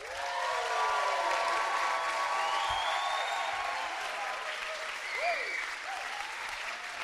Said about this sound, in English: But it's my great privilege. Can you really embarrass her with a huge round of applause?